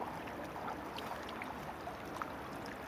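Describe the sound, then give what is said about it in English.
Jack-Jack, a dog, wades through high-tide water at the water's edge, sniffing around looking for a stone, producing continuous sloshing and small splashes over about three seconds, with a few brief brighter splashes and no voices. “Jack-Jack's in water, having a sniff around, looking for a stone.”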